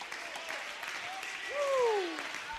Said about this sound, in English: Somebody clap your hands if you believe it.